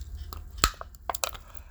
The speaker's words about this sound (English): And as if you hear some crinkling of paper, I get these little, let me try to open this water bottle.